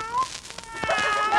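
A cat coming for sardine oil meows in short, wavering cries, a brief one first and then a longer, rising and falling meow, against a faint noisy background.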